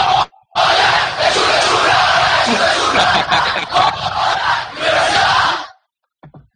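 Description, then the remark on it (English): A big stadium crowd roars in a loud, sustained cheer after a goal is scored, many voices yelling together for several seconds before cutting off abruptly, followed by a couple of faint clicks. “They scored.”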